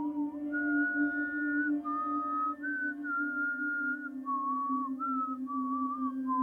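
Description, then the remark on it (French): A woman whistles a slow, wandering tune of long held notes and short slides, steady in volume, over a constant low background hum. “J'étais en train de travailler sur un dossier important quand elle s'est mise à siffler.”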